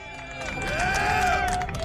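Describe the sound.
A live audience cheers and claps in a steady, loud wash of sound, with several voices whooping and rising in pitch over the applause for about two seconds.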